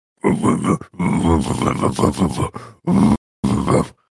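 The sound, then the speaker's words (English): A man chokes on a chicken bone and gags, letting out a run of strained, throaty grunts and groans in loud irregular bursts, ending with two short, harsh coughing heaves. “Yeah, guys, I think he might be choking on a chicken bone.”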